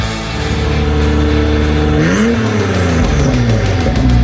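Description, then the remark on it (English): An Acura NSX sports car engine roars loudly and steadily as it is driven, its pitch sweeping through gear changes with a rising then dipping whine, continuous with no talking. “Sounded amazing, but that is an NSX.”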